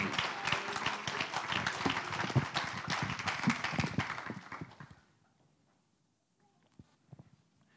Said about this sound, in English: Hallelujah. Clap your hands one more time to the Lord.